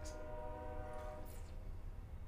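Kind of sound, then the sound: vehicle, train passing nearby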